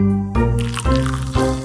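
A fresh cup of coffee is poured, a gurgling, resonant liquid sound that surges in three quick waves over under two seconds, with no voices.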